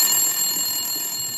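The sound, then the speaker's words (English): A telephone rings in a fruit and vegetable shop with a steady, bright electronic trill, its high tones held constantly over the whole stretch with no pause and no voices. “It's a normal day as you're working there and the phone rings.”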